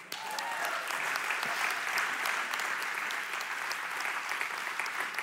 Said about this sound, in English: That is a miracle. That is good. And I want you to cheer for it right now.